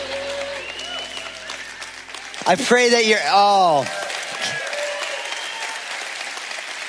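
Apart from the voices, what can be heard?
audience clapping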